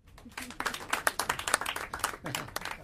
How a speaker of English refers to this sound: Clap if you're married.